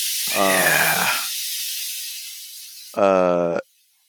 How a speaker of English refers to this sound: There could be, do you hear that water? Is there water running? Yeah, the sink is going. Oh. That's the water.